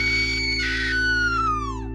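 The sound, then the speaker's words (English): A woman's piercing, sustained scream in a kitchen, loud, holds a high pitch, turns raspy midway, then slides downward as it fades out over a steady low hum. “… rushes into the kitchen and lets out a deafening scream”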